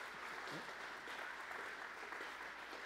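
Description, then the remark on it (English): A large crowd claps steadily for the full few seconds, applauding performers as they leave the stage, a dense, even wash of echoing applause with a faint murmur of voices underneath. “So let's give them a rousing applause here up at that.”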